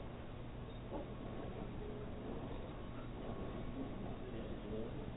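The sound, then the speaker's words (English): A passenger train pulled by a yellow and black engine, with about six cars ahead and four or five behind, rolls steadily along the rails, a continuous low rumble with a soft rattling texture and no distinct breaks, fairly quiet, heard from on board. “We have a yellow and black engine pulling us. There looks like 6 cars in front of us and 4 or 5 in back of us.”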